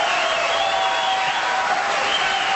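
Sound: crowd applause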